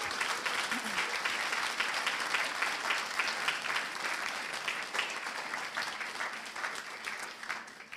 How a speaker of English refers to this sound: Oh, yeah, let's give him a round of applause.